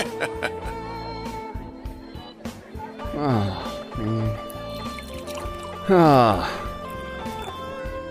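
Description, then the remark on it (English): Vodka poured over ice, two short glugging pours about three seconds apart, each with a quickly sliding gurgle tone, over a steady bed of background music and murmuring voices. “Get us some vodka on the rocks.”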